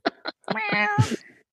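A cat meows close by: two short chirps followed by a long, drawn-out, wavering meow that rises and then trails off, with no voices present.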